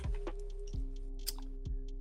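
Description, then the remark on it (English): Someone chews chocolate kisses candy, with about three soft, thudding bites and small wet clicks in between, over a low steady hum. No one speaks. “I can hear you chewing. Hey, I'm eating chocolate kisses.”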